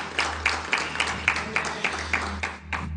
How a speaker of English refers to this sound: Thank you so much, worship team. I love you guys. Can we give a huge round of applause to the worship team as they do a phenomenal job?